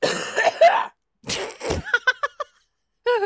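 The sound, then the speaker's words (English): A rough cough bursts out in the middle, followed by a few quick clicking throat sounds, with short bits of vocal noise before and after. “When you coughed, two little tentacles shot out of your mouth and adjusted wait your just microphone.”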